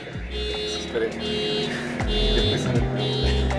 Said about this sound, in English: Okay. We waited a bit for the noise to settle down, but nope. The honks kept on blaring.